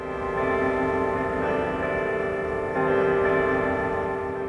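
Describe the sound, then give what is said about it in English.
Bells ring continuously in dense, overlapping tones, with fresh strikes swelling the sound now and then. The ringing is steady and fairly loud, with no voices. “Let's play some bells for them, too.”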